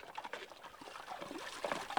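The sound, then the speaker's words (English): Soft trickling and light splashing of water being disturbed to show bioluminescence, a continuous irregular patter of small drips and sloshes at low volume, with no voices. “So basically, whenever you disturb the water, this tiny little, I think it's animals.”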